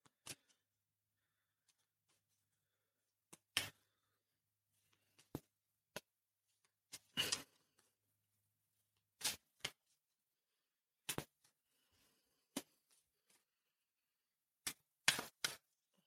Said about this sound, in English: So I'm going to kind of take a minute here, shuffle the cards, and then I'm going to kind of return to give you the reading, in other words.